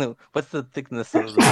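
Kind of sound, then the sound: human body sound, sneeze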